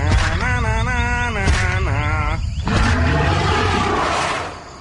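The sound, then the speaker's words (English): A loud dinosaur roar coming through the Burmese jungle: a few drawn-out, wavering bellows run together over nearly five seconds, rumbling low and rising into a harsh, trembling growl before fading at the end. “That's right, it's a dinosaur.”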